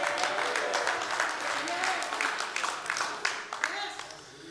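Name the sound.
audience applauding and cheering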